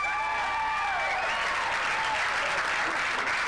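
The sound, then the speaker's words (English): A crowd claps steadily after being asked who is single, a dense wash of many hands clapping at once with a few scattered cheers and whoops rising over it. “How many people by applause are single?”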